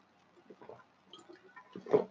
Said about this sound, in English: Sit on that for a second while I take a sip.